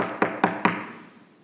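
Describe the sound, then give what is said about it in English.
Three firm, evenly spaced knocks on the wooden door of the prophet's house as Naaman returns, fairly loud, each with a short resonant thud, followed by quiet with no voices. “This time opening the door was the prophet.”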